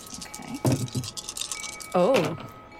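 Four small dice rattle and clatter across a hard surface in a quick burst of sharp clicks, with a couple of brief vocal exclamations over the tumbling.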